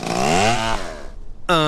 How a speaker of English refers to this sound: Cutting down trees.